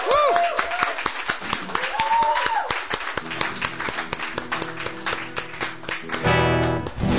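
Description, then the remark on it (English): An audience at a local live music show applauds for several seconds, a dense patter of hand claps with a few rising whoops early on and a low, steady tone humming underneath toward the end. “So give a big round of applause to everybody.”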